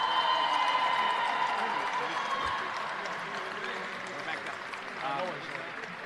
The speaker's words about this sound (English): Big round of applause